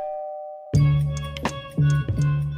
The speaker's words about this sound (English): He rings the doorbell.